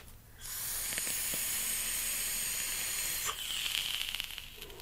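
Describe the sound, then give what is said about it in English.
A fused Clapton vape coil hisses steadily for a few seconds while firing, then stops and gives off a quick run of small crackling pops as it settles, fairly quiet, with no talking. “Have you noticed that all fused Claptons crackle after the fact?”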